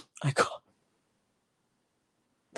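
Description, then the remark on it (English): A single sharp, fairly loud cough from a parent, which startles their daughter, breaks out near the start. It is followed by about two seconds of silence before another sound begins at the very end. “I coughed and I scared my daughter and she farted.”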